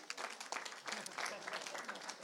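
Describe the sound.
An audience claps in a steady round of applause, a dense patter of many hands at moderate loudness, with a faint murmur of voices mixed in.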